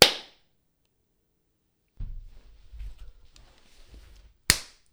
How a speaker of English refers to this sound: All right, well, we got to do my clap. Your clap. Okay, go.